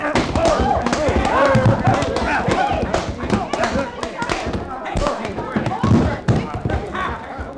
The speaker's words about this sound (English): You darn near knocked his head right off his shoulders, you did.